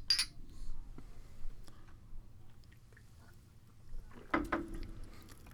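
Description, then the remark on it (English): Glasses clink in a toast, the second round of cheers: a brief, bright clink right at the start, followed by quiet handling noises and a second soft knock near the end, all fairly faint with no talking. “All right, cheers number two, my friends. Let's do this.”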